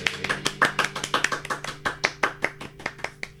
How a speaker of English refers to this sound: It sounds like somebody's like climbing up the wall. Climbing up the wall? What could that possibly be?